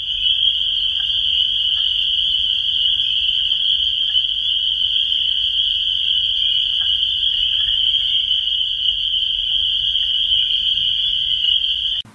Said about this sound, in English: And, because the peepers are so loud, they sort of overwhelm the wood frogs. But take a listen and you can hear them.